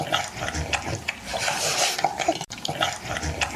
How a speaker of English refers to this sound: That's actually a dog drinking water.